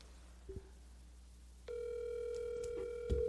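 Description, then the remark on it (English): A short electronic blip, then the steady, sustained ringing tone of an outgoing phone call, a buzzy, mid-pitched hum that holds without a break, ending with a faint click. No one speaks. “hit call”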